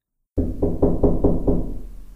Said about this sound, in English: We had just barely rolled out of our cots when we heard a bang at the metal door.